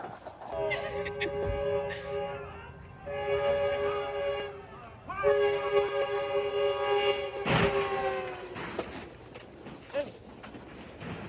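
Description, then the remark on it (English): A train horn sounds in three long, loud blasts, the last one held longest, over rumbling background noise with faint voices underneath. “Think about a train. It don't stop for fucking nothing.”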